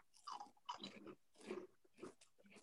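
Crunching of a spicy, crispy seaweed snack with a tempura batter coating, with several sharp bites and chews in quick, irregular succession and no talking.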